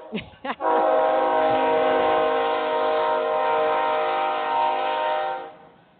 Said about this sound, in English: Well, there goes one of those trains. That's a BNSF carrying, looks like gravel, huh? Yep. Gravel or silica. It's in hopper cars, but it's not in flow cars.